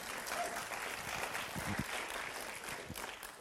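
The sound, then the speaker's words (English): A crowd claps for God steadily for a few seconds, a dense wash of overlapping applause holding at an even, fairly loud level with a few faint voices mixed in. “You can clap God right there.”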